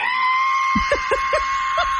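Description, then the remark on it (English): During a TV interview, a male eyewitness vocally imitates the screeching whistle of a jet going down: a sustained, steady high-pitched tone held throughout, broken near the end by a few short, choppy vocal bursts. “He did an interview with a TV station in South Carolina and imitated what it sounded like. I heard a screeching between a screech and a whistle.”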